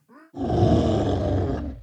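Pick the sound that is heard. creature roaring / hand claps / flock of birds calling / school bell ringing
creature roaring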